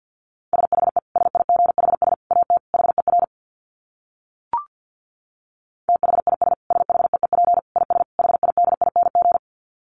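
Rapid Morse code at 50 words per minute: a single steady mid-pitched tone keyed on and off in quick dots and dashes, in two long runs separated by a few seconds of silence broken by one short click.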